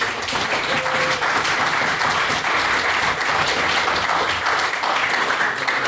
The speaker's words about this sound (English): Please, for a second round of applause